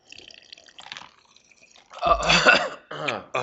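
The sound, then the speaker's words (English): Faint, light clinks of ice cubes in a glass during a weekly beverage break toast, followed by louder wet gulping and sloshing sounds of someone drinking. “Can you hear the ice cubes?”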